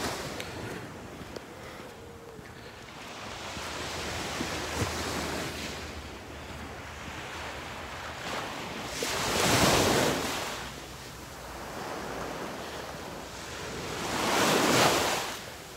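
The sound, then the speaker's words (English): Gentle Gulf waves wash onto a beach at Bonita Springs, Florida, in a steady hush, on a walk along the beach toward Naples, with the water very calm and two softer swells rising and fading around ten and fifteen seconds. A light wind brushes the microphone, and no one speaks. “Walk Along the Gulf: Bonita Springs, FL Walking Beach Toward Naples”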